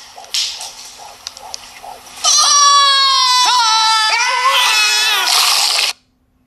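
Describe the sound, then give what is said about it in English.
A couple of seconds of quieter, scattered sounds give way to loud, shrill screaming in a Doritos Super Bowl 50 TV commercial: several long, piercing wails that slide downward in pitch and then rise again before cutting off abruptly. “You just heard a bunch of screaming after 10 seconds of silence.”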